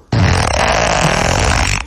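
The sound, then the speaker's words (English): A loud, sustained fart blasts for nearly two seconds, buzzy and dense with rumbling low tones, starting abruptly and holding steady before cutting off, with no voices present. “and then you hear the big fart”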